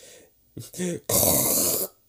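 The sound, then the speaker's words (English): A voice imitates the loud, gross snore of a sleeping mummy: a short throaty grunt, then a long raspy, noisy snort lasting nearly a second, rough and gurgling across a broad range. “You jump back as the mummy lets out a disgusting snore.”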